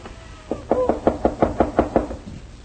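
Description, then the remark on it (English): A quick, steady run of about nine firm knocks on the door of a house, fairly loud, spaced evenly over a couple of seconds with no voices. “Open the door, good neighbor. Open the door to a friend.”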